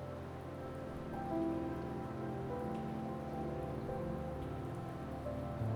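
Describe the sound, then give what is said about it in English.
Steady rain falls without pause, a dense, even patter on a surface, moderately loud with no voices or other sounds breaking through. “Close your eyes and let the falling rain wash down upon you tonight.”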